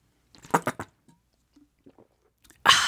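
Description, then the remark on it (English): Someone drinks water from a plastic bottle: a few sharp crinkling pops of plastic, then soft, quiet gulps, ending with a sudden loud, breathy burst of air. “I really wetted my whistle.”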